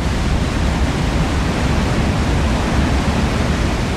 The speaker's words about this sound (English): Here is what Niagara Falls, a big, majestic waterfall, sounds like.